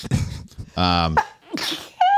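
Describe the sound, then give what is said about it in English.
A loud sneeze with a sharp intake of breath beforehand and a voiced, drawn-out burst, followed by brief murmuring and another short vocal sound. “bless you.”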